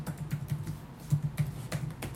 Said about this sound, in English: Yes, there are some bits where I click on the keyboard.